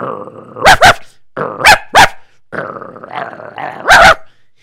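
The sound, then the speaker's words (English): A dog growls steadily in three low, rumbling stretches, broken by sharp, loud barks—two quick pairs early and a final bark near the end—aggressive in tone. “Do you see my dog? He smells you.”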